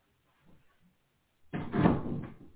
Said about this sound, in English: Sorry, my cat came in here and she opened the door. She likes to be in here when we do our shows.